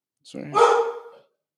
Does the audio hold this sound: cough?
no